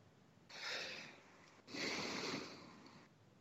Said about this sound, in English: Sorry, I had to stifle a yawn there.